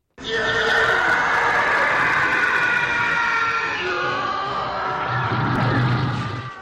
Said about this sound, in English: The first time any of us saw or heard a TIE fighter.